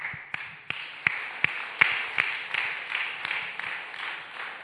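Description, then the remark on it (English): An audience claps hands for Jesus during worship in a steady, quick rhythm, sharp unified beats roughly three per second rising over a continuous wash of many scattered claps, moderately loud, with no talking. “Keep clapping your hands for Jesus.”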